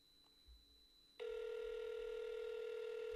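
A steady electronic phone tone starts after a second of near silence and hums on loudly and unbroken, like an outgoing call ringing on the line with no one picking up.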